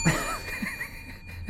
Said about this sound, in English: This is a bell that I got Robin for Christmas.